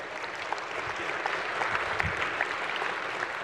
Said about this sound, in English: Hey, can we just applaud these guys?